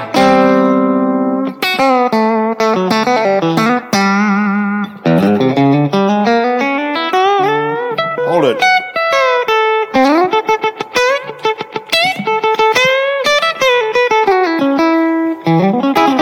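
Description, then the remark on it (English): An electric guitar plays a busy lick full of double-stop bends, paired notes sliding up and down in pitch with a slightly overdriven tone, sustained and loud for about sixteen seconds with no talking. “Now that's the lick right here.”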